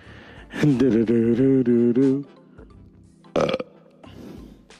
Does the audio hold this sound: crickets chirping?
no